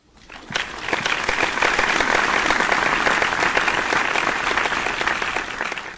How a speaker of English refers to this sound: Round of applause for this woman and her extraordinary talents.